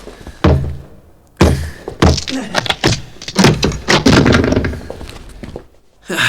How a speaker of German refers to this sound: Vorsicht! Ich breche die Tür auf. Geht etwas zur Seite.